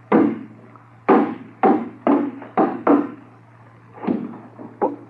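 A hammer pounds on a wooden box to break it open: about eight sharp, woody blows in an uneven rhythm, each ringing out briefly, over a low steady hum with no voices.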